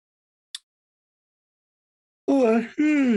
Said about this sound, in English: Here we go with the yawns already.